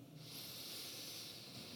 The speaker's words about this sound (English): So if this feels right, I invite you into 3 intentional breaths together. Breathing in.